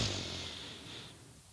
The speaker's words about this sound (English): Let's take a couple of deep breaths to open ourselves up to receive. So we're going to go ahead and breathe in our nose.